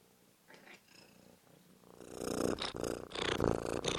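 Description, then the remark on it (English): A pet cat named Gracie chattering as if she has seen a bird, with the window open on a spring day: faint, scattered chirps at first, then a louder run of rapid, rhythmic stuttering bursts with a raspy, buzzing edge. No one speaks over it. “Well, she was chattering like she's seen a bird.”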